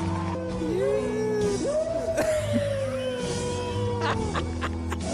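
A man on a reality TV show in Brazil lets out a long, high-pitched shriek that wavers and slides in pitch for several seconds, loud, over a steady low background hum with a few sharp knocks.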